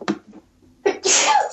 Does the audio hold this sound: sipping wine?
no